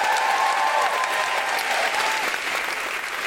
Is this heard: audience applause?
yes